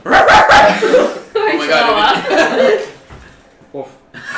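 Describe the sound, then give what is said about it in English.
A person imitates a dog barking with a few loud yaps at the start, followed by a longer drawn-out vocal bark-like sound and a brief laugh near the end. “I was asked to ask who was the best bark.”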